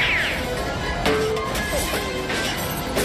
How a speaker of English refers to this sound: And most bizarrely, the sound effects, especially in the final sequences, just some really bizarre sort of boink, clank, bonk.